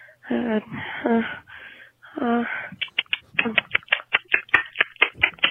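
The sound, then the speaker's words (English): A voice makes a few whiny, nasal vocal sounds, then breaks into a quick, uneven run of sharp, loud mouth clicks, repeating until the end. “Now I just make this clicking noise all the time.”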